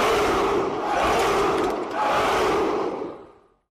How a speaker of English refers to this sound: And I'm going to leave you this week with the 49ers first down chant.